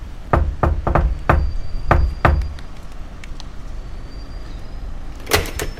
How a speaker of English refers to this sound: I'm just about to knock on the door of the flat where Miss Cynthia Rothrock is staying in London, while she's appearing at the World of Kung Fu exhibition at Earl's Court. So here goes.